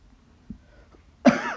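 person coughing

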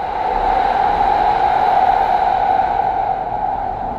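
metro train running underground

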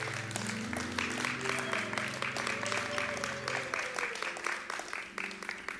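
audience hand clapping

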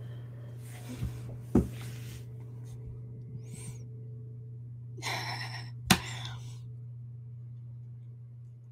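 sneezing fit

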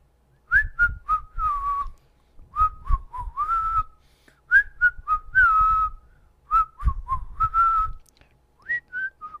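whistled melody

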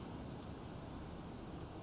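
wind blowing outdoors

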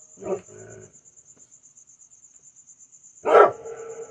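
dog barking

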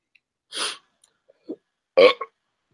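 burp

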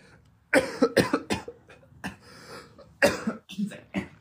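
coughing

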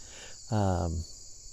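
crickets chirping outdoors

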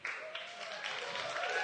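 audience round of applause

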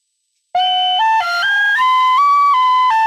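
penny whistle being played

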